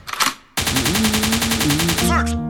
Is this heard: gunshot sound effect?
yes